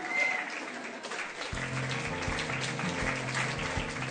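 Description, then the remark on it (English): An audience at the BBC television program How Mad Are You? applauds steadily to encourage performers appearing one by one, a dense wash of many hands clapping at once, with a low rumbling tone joining in partway through and continuing underneath the applause. “All of them look very worried, but everyone claps to encourage them, and each of the people manages to perform well.”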